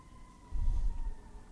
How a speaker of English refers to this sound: Sorry, I'm distracted by the siren. I just can't help it. I hear a siren and my mind goes all kind of places.